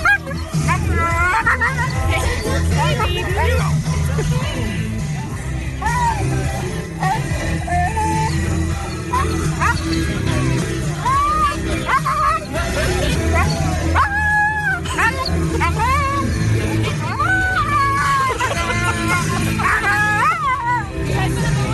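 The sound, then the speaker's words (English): A husky yips, whines and howls almost nonstop, rising and falling in pitch in a busy, continuous stream of vocalizing over a steady low background murmur. “It'll build for a little bit, about 20 seconds of what this dog sounded like.”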